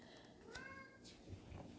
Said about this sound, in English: Apparently, the cat's having a great awakening.